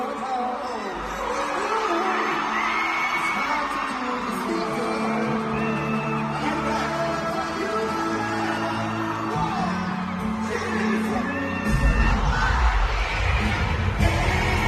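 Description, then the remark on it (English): A live performance by a band with a singer of one of a singer's songs plays loudly in Toronto while a large crowd of 30- and 40-something fans yells and cheers along, the voices merging into a dense, continuous roar, with heavier low-end bass swelling near the end. “That's them doing one of his songs.”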